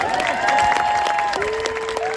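crowd, crowd cheering and applauding

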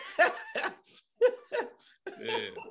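human body sound, coughing

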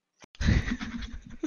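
animal, goat bleating

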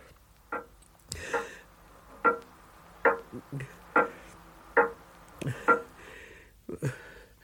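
household object, clock ticking

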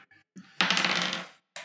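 household object, dice being rolled

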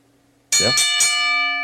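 signal or alarm, bell being rung

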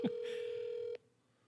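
signal or alarm, outgoing phone call ringing

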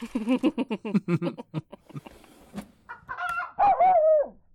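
bird, chicken clucking and crowing

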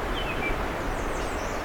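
bird, bird call

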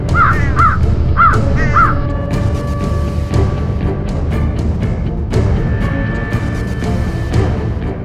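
bird, flock of crows cawing

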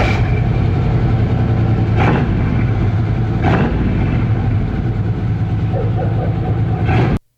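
vehicle, truck engine idling

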